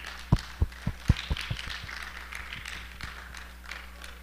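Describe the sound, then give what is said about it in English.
A church audience claps their hands to welcome a speaker coming up to deliver the sermon, starting with a few sharp, loud claps in a steady rhythm before settling into softer, overlapping clapping that continues to the end. No one speaks. “I was reminded as you guys were applauding that I don't remember the exact phrase, but it basically said that applause before you speak means far less than applause after you speak.”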